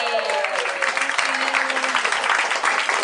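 Sustained applause from an audience for an audience member called on stage to play a game, a dense steady patter of many hands clapping at a constant loudness, with a faint hum of voices and cheering mixed underneath.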